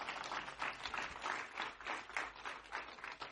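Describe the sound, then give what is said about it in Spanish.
A crowd applauds the Lord steadily, a dense wash of many hands clapping at once with no clear individual beats, holding a fairly even loudness throughout with slight swells. “Ya denle un aplauso al Señor, ¿no?”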